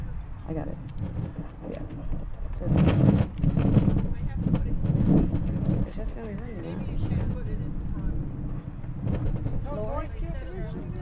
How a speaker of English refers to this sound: It's just going to be windy. We'll be fine.